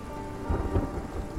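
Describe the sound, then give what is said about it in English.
A thunderstorm: steady rain hisses throughout while deep, rolling thunder rumbles swell underneath in a couple of low surges. No voices, just the continuous storm at moderate loudness. “Macúil and Macéict and Macgréine had their druids call up a storm to blow the fleet back out into the sea, to destroy it if they could, to scatter it to the four winds if they could not.”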